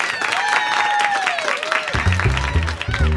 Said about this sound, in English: It's stand-up week, so put your hands together for today's comedian, Aminah Imani.